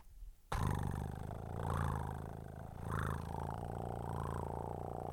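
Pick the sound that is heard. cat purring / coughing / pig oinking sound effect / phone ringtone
cat purring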